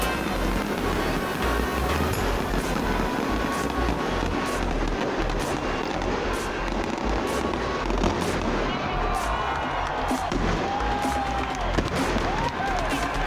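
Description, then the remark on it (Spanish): A loud recámara salvo of firecrackers bursts in rapid, crackling succession, sharp bangs tumbling over one another for several seconds amid the roar and chatter of a large football stadium crowd at the start of the match. “El encuentro inició con la famosa recámara, que había estado ausente por años.”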